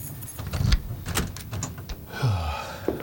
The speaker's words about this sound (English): Lock the closet door. Okay, I'll lock the closet door.